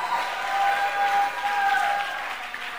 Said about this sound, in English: Clap your hands for my wife.